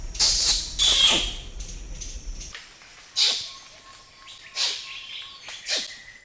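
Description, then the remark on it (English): Several sharp, high-pitched kissing squeaks from an orangutan come in irregular bursts, some brief and some drawn out, with low rumbling noise at the start and quieter gaps between them. “There's a new study about orangutans, and it studied variations in one of the noises that they make, a noise called kiss squeaks.”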